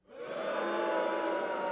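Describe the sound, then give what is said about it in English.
A crowd sound effect: many voices swell quickly into a steady, dense roar that holds at an even, fairly loud level for under two seconds, with no single talker standing out. “That's just some crowd people who click that.”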